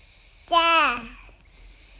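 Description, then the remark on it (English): A 15-month-old girl, looking at a book about animals, babbles a single drawn-out, sing-song vocalization that rises and falls in pitch for under a second, set against a steady background hiss. “That's my 15-month-old daughter.”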